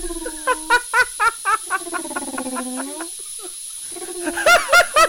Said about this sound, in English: That is the sound of the deflating tits from Killer Rack.